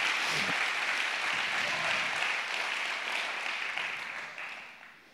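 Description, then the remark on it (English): An audience at a church service gives the Lord a hand clap together in a dense, steady burst of applause that holds strong for several seconds, then gradually tapers off toward the end. No one speaks over it. “Let's give the Lord one more hand clap before we move on.”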